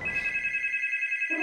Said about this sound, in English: The phone made her jump.